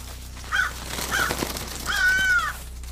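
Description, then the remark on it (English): A flock of crows flying out of an open-sided barn caw three times: two short, harsh calls followed by a longer, drawn-out one, heard fairly clearly over a steady low background hum with no talking. “We kept going, and out of an adjacent, open-sided barn, a flock of crows flew out, as if they were disturbed by something.”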